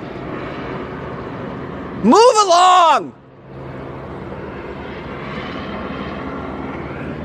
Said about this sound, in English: Damn it. So loud! You hear that, guys? So tired of these goddamn helicopters.